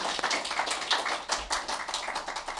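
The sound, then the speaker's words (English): An audience applauds, many hands clapping together in a dense, steady patter that stays fairly even in loudness throughout, with no voices over it. “So they enrich our communities, and I want to acknowledge that and give them a round of applause.”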